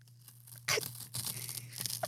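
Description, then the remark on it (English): Crisp crunching and crackling of spray-painted acoustic foam being squeezed in a public library's padded room, a loud burst followed by a longer stretch of dry crinkling, with a steady low hum underneath and no talking. “Okay, if you just squeeze it a little bit, it makes the most satisfying crunch sound.”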